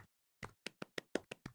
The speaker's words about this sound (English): Golf clap.